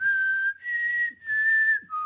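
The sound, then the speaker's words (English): A person whistles a short tune of a few sustained, clear notes, fairly loud, with brief breaks between phrases and no talking. “Whistling doesn't work so well on this setup.”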